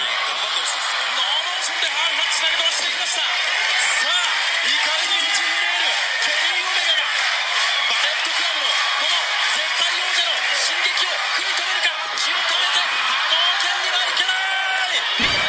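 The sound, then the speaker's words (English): A large wrestling arena crowd roars and cheers continuously at the ending of a match, a dense wall of voices with scattered whoops and shouts rising out of it, loud and sustained throughout. “Listen to the crowd.”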